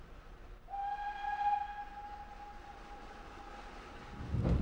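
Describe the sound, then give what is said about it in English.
A train rumbles steadily along the railway line about 1 kilometre beyond Arley station, where the line crosses to the other bank of the river, while a long, steady whistle sounds for about three and a half seconds, then fades, with a louder low rumble swelling at the end. “1 kilometre beyond Arley, the line crosses over to the other bank of the river.”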